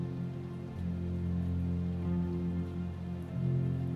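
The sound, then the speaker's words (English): Steady rain falls continuously at night at an even, moderate level, its soft hiss blending with a low, sustained droning hum underneath throughout. “And tonight she comes to you in millions of precious drops of rain.”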